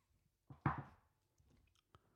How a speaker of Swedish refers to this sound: Nu tog en klunk vin precis